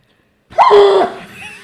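A sudden, loud, forceful burst of breath pushed out in one go, sneeze-like with a strained vocal edge, lasting about half a second before trailing off into a quieter breathy tail.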